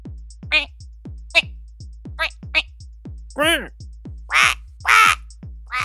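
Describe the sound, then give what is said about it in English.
A run of nasal duck quacks over a steady thumping beat, starting as short clipped calls and turning into longer, louder, raspier quacks toward the end. “But we are all united in our desire to successfully learn and speak fluent duck.”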